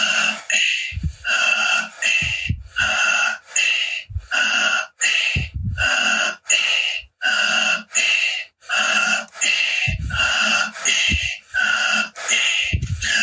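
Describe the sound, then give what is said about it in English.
Fast, forceful breathing in a breathing exercise repeats in a steady rhythm, roughly one loud breath per second, each deep inhale and exhale a noisy rush of air, continuing without pause and with no talking. “keep on breathing, deeply in, letting go, deeply in, letting go, deeply in.”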